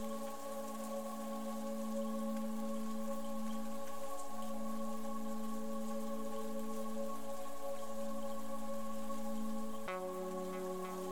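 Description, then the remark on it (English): Steady rain patters continuously at a moderate level, blended with a sustained, low humming musical drone that shifts pitch slightly near the end. No one speaks. “And I invite you to listen to the sound of the rain.”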